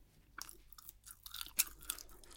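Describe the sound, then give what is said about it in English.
Wet, sticky chewing of fish paste, a run of soft smacking mouth sounds with crisp high clicks, one sharper crunch standing out near the middle, fairly quiet and with no talking. “Actually, this fish paste is pretty pungent.”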